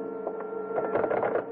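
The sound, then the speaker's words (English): A telephone dial being turned and whirring back as someone starts dialing the police number, a steady mechanical hum broken by a quick run of soft clicking ticks that grow busier toward the end. No one speaks. “I meant to dial the police number, Sutter 12020, but SU was as far as I got.”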